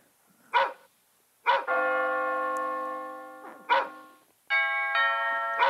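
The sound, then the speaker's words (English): A doorbell at a house rings twice with sustained, ringing chime tones, while a dog barks loudly in short bursts before, between and after the chimes. No one speaks. “I think someone's at the door.”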